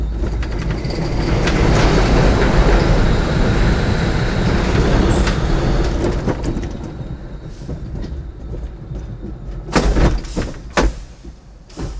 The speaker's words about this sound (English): Mine Train is a 3-minute ride. It's a big wood roller coaster and it goes through a bunch of tunnels.